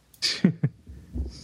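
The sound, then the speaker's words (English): A forceful, hissing blast of air through the nose, followed by two short snorting bursts and a low, muffled rustle, with no one speaking. “I gotta blow my nose again.”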